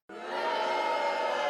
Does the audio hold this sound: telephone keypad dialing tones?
no